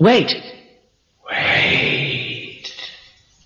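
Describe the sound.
A short voiced call with a rising-then-falling pitch, a brief silence, then a longer, smeared, washy return of the voice that rings on and fades: an echo in the Echo Room, a hallway with circular walls built this way by Mr. Terrell, heard when standing in its exact middle.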